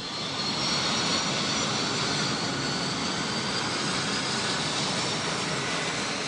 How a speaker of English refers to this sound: It's a hot day in Hamilton, and the city's airport is buzzing with dozens of shiny small training aircraft. Off to one side of the runway is home to one of the country's biggest and newest pilot schools.